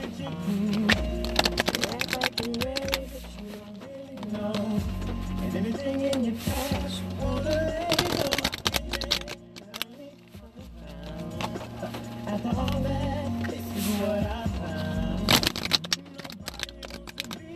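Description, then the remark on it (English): A traditional tarot deck is shuffled in bursts of papery riffling and soft slaps, repeating irregularly for several seconds over a steady musical background. “I'm just shuffling right now.”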